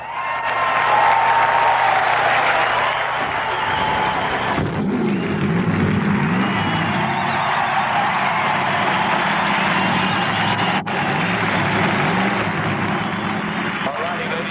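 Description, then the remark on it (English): A large crowd gives Richard Petty a standing ovation at his 1,000th start on Father's Day, applauding and cheering in a loud, continuous wash of noise, joined after a few seconds by the deep, rising and falling rumble of his engine starting underneath. “Everyone, a standing ovation for Richard Petty.”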